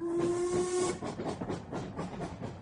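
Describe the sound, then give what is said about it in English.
A steam locomotive pulling a boat train sounds its whistle in a single sustained blast for about a second, then gives way to loud, rhythmic chuffing and hissing steam as the locomotive moves by. “I travelled by the boat train,”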